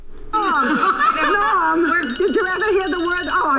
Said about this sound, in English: But you got a phone ringing. Oh. Answer the phone.